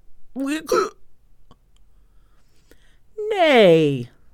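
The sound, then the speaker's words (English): A voice imitates hiccups: a short, jerky vocal hiccup, a pause of quiet, then a longer, louder hiccup-like sound with a sweeping pitch. “Come out and behave yourself. I've got the hiccups.”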